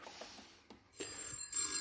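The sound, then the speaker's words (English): A telephone rings with a bright, rattling metallic bell, sounding in short bursts that grow fuller toward the end, fairly quiet and with no one speaking. “Oh, do excuse me whilst I... Oh, good Lord, it's Brother Benji calling from Blighty. I must take this.”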